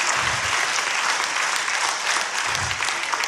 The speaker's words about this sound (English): Somebody clap your hands for me right now.